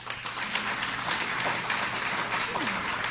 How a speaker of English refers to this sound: Now clap if you think the Democrats have the best chance of holding on to the White House with someone else.